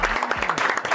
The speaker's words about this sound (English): Round of applause for Asia Wilson.